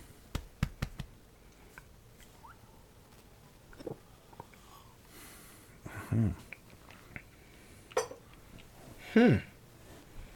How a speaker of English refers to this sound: Sorry, I got the hiccups.